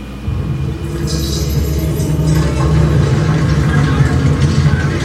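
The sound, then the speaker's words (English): A deep, continuous rumbling roar fills the whole stretch, heavy low-end churning with a hiss of debris layered on top, swelling slightly louder toward the end: the cave-in from a film scene with dwarves. “Doesn't that sound like a roar? Oh, wait, go back. Like it's the cave-in.”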